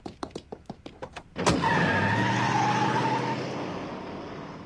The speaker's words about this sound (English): Did he just drive off in a car?